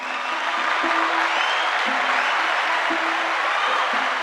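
A crowd claps steadily in a dense, sustained round of applause, loud and close, filling the whole moment with no voices on top.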